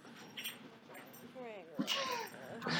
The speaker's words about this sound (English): What kind of dog is Franklin? He's a labradoodle. Oh my gosh, Franklin!